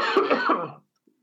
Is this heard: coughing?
yes